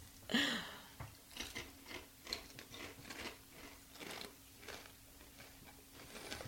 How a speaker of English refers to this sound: Don't chew on the microphone. So I'm going to step back a little bit. Step back while I chew my chip.